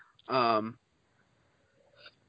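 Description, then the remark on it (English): A person clears their throat with some water: one loud, short voiced throat-clearing grunt rings out, then near-silence with a faint low murmur and a brief soft sound near the end. Any drinking is not audible. “Sorry, I gotta clear my throat with some water.”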